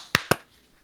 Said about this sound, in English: And then we'll do a clap sync in 3, 2, 1.